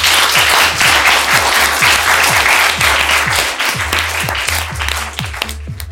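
An audience applauds steadily after a panel discussion, dense overlapping claps forming a loud, continuous wash of sound that holds for several seconds before easing slightly at the end.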